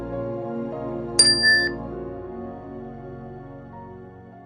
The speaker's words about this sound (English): And we'll begin the meditation with the ring of the chime, and end the meditation with the ring of the chime.